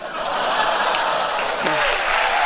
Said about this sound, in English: Again, that's the Republican Jewish Coalition applauding turning away immigrants fleeing persecution.